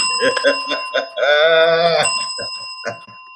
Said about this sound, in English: Hit the bell on that one.